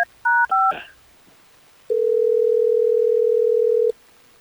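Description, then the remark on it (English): Two quick dual-tone keypad beeps as a phone number is dialed and a brief rustle, then a pause before a steady ringback tone hums for about two seconds while an outgoing phone call connects. No one speaks. “We're going to get her on the phone, okay?”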